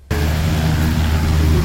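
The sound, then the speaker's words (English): A steady, loud engine drone from a light propeller plane flying from the Tasmanian mainland, with a low humming tone over a broad rushing roar that starts abruptly and holds constant throughout. “Boarding a light plane from the Tasmanian mainland, it's an unusual commute to work for Palawa man Andrew Sculthorpe.”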